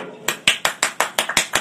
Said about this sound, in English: So you'll say, this guy needs a lot of help. It's nebach. What do you gain by applauding yourself?